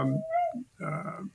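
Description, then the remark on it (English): A dog belonging to the speaker's daughter whimpers in two short, whiny bursts, the first a rising high-pitched cry and the second a brief strained whine after a short pause, with no talking. “So you're getting your dog depressed now, Fred.”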